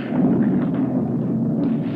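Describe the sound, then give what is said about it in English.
A loud, steady roar of a blazing fire as a fire door gives way, with crashing debris filling the whole stretch, a dense rumbling burst with no break and no voices. “The fire door let go.”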